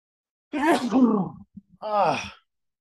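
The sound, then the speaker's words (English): A man's voiced sneeze, or a sneeze-like burst, with breathy noise fading into a drawn-out vocal sound. After a brief gap a second, shorter voiced burst follows. Both are fairly loud, with no speech. “Another sneeze coming.”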